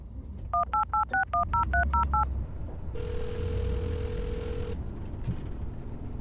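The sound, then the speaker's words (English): A rapid string of about ten touch-tone beeps as a phone number is dialed to call Mom, followed by a steady low ringing tone over faint background hiss. “Call Mom.”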